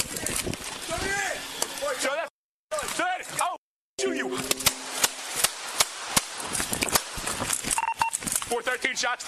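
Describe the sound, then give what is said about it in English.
Shouting voices give way to a series of sharp, cracking gunshots fired in quick, uneven succession by a man who jumped out of a car, in video released by the district attorney, with people still talking and yelling between the bangs. “Within 6 seconds, he begins to shoot.”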